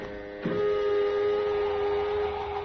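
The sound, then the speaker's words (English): An airlock being exhausted of air after the hatch is closed and a suit helmet fastened, until air pressure reaches zero: a sudden onset gives way to a steady mechanical drone with a high whine and an even hiss running unchanged to the end. “Let us know when your helmet is fixed and we'll exhaust the airlock, then.”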